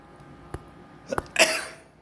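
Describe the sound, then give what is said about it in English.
A single sharp sneeze bursts out after a couple of quick breathy catches, then trails off into a brief exhale, with no talking. “Excuse me, I tried to hit the pause button, but my sneeze went over the air.”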